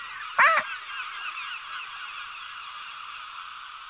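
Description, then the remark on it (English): A single loud, squawking seagull call rings out near the start, followed by a steady wash of fainter gull cries that carries on to the end. No one speaks. “I do love to just know that the homosexual seagulls were there that day, like cheering from the rafters.”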